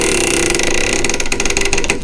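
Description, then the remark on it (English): A door creaks open in one long, loud, groaning squeak that holds a raspy, strained tone for about two seconds without a break: the squeaking door of the inner sanctum, the sound that opened a half-hour nighttime radio show of occult terror and suspense. “No one doubted that unspeakable horrors lurked behind the squeaking door of the inner sanctum”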